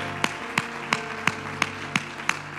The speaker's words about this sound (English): Clap your hands to the Lord and let's give him praise.